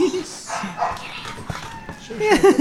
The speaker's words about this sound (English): Our dogs are crying.